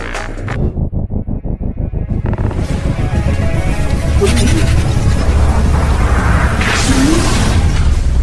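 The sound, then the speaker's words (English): An engine sputters to life with a quick rhythmic chugging, then swells into a loud, steady roar joined by rising whooshing tones as a swirling portal to the universe opens. “Time to start some engines and a portal to the universe.”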